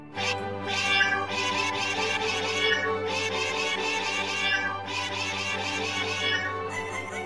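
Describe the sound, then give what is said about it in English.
A chorus of cats meowing continuously, overlapping voices forming a dense, sustained din over a steady low hum, loud throughout with no talking. “Like, cats everywhere.”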